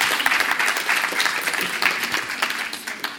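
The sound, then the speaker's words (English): A church audience claps together at a Sunday morning service in a steady, dense wash of applause, many hands patting at once at an even, moderate loudness throughout, with no voices standing out. “So please give them a hand clap, because they've done really well this Sunday morning.”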